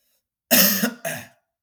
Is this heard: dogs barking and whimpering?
no